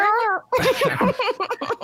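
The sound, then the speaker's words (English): A single short cat meow rings out clearly, then a voice immediately starts talking over the remaining moments. “Can we put a cat noise behind it?”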